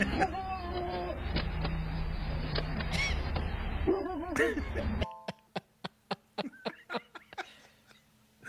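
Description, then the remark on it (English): High, whiny yips rise over a busy, noisy background, then a quick run of sharp, yappy barks from small dogs rings out clearly, a dozen or so in rapid succession. “Them little dogs come around, they're just like, it ain't my dog.”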